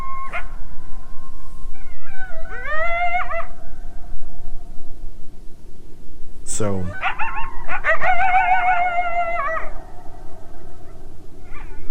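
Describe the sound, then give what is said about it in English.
Coyotes calling with wavering howls and sharp yips, several voices overlapping in bursts with a brief echo, over low background noise. “But right, so I got some coyote stuff around. I'll play it real quick.”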